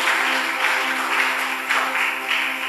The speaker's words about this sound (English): Is anybody happy? Can somebody clap your hands if you're glad that God is calling you?